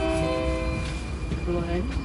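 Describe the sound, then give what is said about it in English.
A metro train runs with a steady, loud rumble and sustained whining tones, with faint indistinct voices in the background. “The city is served by three metro lines, and tickets are readily available from the vending machines at the station.”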